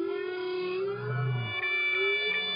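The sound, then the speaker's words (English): Humpback whale song: long, sustained moaning tones with rich overtones, a deep low groan swelling in the middle and faint higher whistles near the end, heard alone without any talking. “So all the humpback whales in any one ocean are singing one song, and then they change it altogether.”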